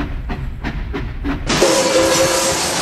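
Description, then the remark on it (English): The Eat Your Spanish train, operated by Mr. Mouse, rolls by with a steady rhythmic chugging clatter, about five beats, then breaks into a loud, sustained burst of hissing steam with a thin squealing tone over it. “Mr. Mouse is taking conductor lessons to learn how to operate the Eat Your Spanish train, and he could sure use a little more practice when it comes to steering.”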